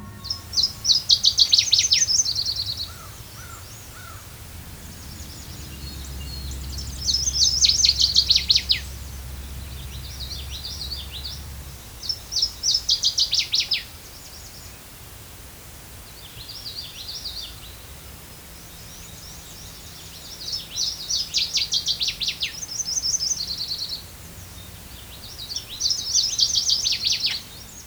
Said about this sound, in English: Fortunately, a couple days earlier, I recorded a singing male northern water thrush at St. John Point Nature Preserve with an automated recording unit.